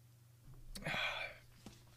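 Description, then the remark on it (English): A soft click, then a short airy slurp as someone sips a drink, followed by another small click; quiet, with no talking. “I'm going to take a sip of this drink”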